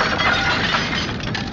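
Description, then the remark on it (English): A loud, sustained crash of glass breaking, a dense crunching and shattering that fills about a second and a half, with no voices. “Here, I'll grab a piece of glass and cut you free.”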